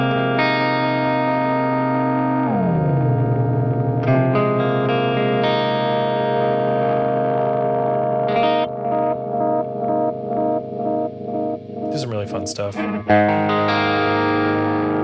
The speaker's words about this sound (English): So anyway. Love it. That's the Oracle Analog Echo from Mythos. Friggin' love it, man.